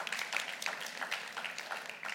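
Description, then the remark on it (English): An audience claps together in a brief, moderately quiet burst of applause, the overlapping claps forming a steady crackling patter that lasts a couple of seconds with no voices. “Yeah, you can clap.”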